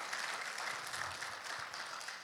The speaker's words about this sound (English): So for those 25-ish people who came out yesterday, how about a round of applause for them for their hard work to make it look nice.